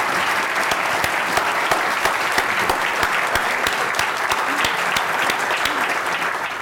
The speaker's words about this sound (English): Please join me in giving him a round of applause. Thank you so much.